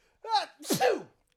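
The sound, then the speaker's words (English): A single fairly loud sneeze: a short rising intake of breath followed by a sharp, noisy burst that trails off quickly, with no talking over it. “thank you. God bless you.”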